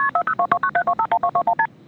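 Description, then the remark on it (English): A quick run of about eleven touch-tone keypad beeps, each a short two-tone chirp at an even, rapid pace, with no talking, ending abruptly, as 911 is dialed to call the police and report a man. “called the police to report the man.”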